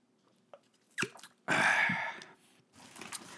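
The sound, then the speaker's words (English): A sip of gluten-free bourbon organic cider: a couple of small mouth clicks, then a loud, drawn-out wet slurp, followed by a quieter swallow and breath. No one talks. “I'm going to take a sip of this gluten-free bourbon organic cider.”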